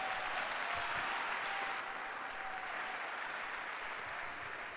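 An audience claps unto the Lord steadily for the whole stretch, a loud dense wash of many hands with no break, dipping only slightly in level partway through.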